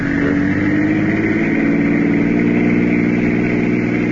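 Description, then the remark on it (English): A car engine runs steadily and loud, its pitch climbing slightly at first as it picks up speed, then holding a sustained, even drone with no voices. “Faster, Richie. See if that car stays with us.”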